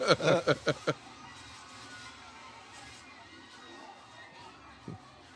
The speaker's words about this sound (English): Screaming, screaming, screaming people.